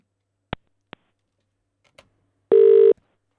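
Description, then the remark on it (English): A few sharp clicks of a phone number being dialed, then a single loud, buzzing ring tone lasting about half a second. No one speaks. “Typing in a number, listeners.”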